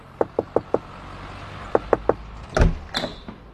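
Sharp knocking on the door of a house: four quick raps, a pause, then three more, followed by a heavier clunk and rattle, like the door being opened. No one speaks.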